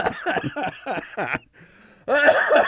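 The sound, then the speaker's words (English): A loud cough follows a run of quick, breathy laugh-like bursts and a short quiet pause, the final cough harsh and strained. “I'm leaving that cough in.”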